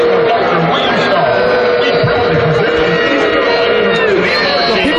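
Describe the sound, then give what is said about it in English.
A large stadium crowd at East Carolina boos and jeers its own band, whose members kneel while playing the national anthem: a continuous dense roar of many voices with scattered shouts and whoops rising over the steady, loud wall of sound. “So we're getting into a situation now where people are booing their own band because members of the band are kneeling down while playing the national anthem.”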